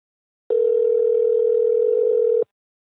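A steady telephone dial tone hums alone for about two seconds, one flat continuous note that starts and cuts off abruptly, close and clear with no voices over it.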